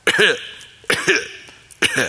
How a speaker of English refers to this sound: It's that dry cough where you can't get the dust out.